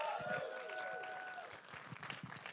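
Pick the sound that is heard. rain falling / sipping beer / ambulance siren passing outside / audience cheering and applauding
audience cheering and applauding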